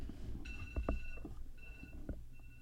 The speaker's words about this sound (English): Did you know that I am an amateur and I have my alarm going off?